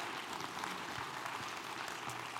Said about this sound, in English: Can we give him a round of applause today?